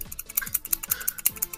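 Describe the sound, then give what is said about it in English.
A push pen clicked over and over in quick, uneven succession, sharp clicks with faint low thumps mixed in, and no voices. “No, I'm actually kind of enjoying myself. I'm playing with a push pen.”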